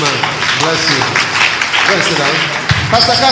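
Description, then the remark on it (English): A crowd claps steadily for a man in a dense, sustained burst of applause while a man speaks over it, his voice rising above the clapping throughout. “Clap for him.”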